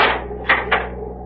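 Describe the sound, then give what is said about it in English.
A cabin door on a Navy cruiser being locked: two sharp, solid metallic clunks about a quarter second apart over a low steady hum, with no voices. “You may lock the door now.”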